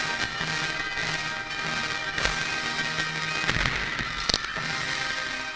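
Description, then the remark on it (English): Fireworks bursting at irregular intervals, a few sharp booms and crackles standing out over a steady wash of outdoor noise, with no one talking. “Whoa, that guy sure has a flair when it comes to the fireworks.”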